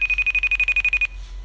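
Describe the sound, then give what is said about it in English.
A steady, high-pitched telephone line tone pulsing rapidly about a dozen times for a second, then cutting off, heard alone as when calling abroad, with a faint low hum beneath. “See, different dial tone because we're calling international.”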